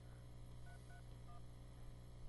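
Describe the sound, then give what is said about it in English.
Three short phone keypad tones beep in quick succession as an access code is entered, set against a steady low electrical hum with no one speaking. “If you would like to receive further details by text message, enter your 4-digit access code now.”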